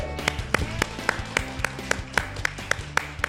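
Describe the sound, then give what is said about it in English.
An audience at the 2019 Brown County Library Comic-Con claps in steady unison, about a dozen sharp, evenly spaced claps at a brisk beat, with a low, droning musical backing underneath. “And yes, it's okay to clap. Make some noise for Comic-Con.”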